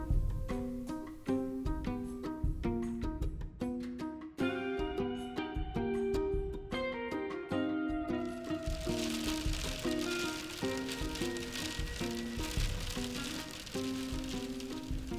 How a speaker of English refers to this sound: So it's hailing out and I am in the van reading